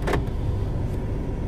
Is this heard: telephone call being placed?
no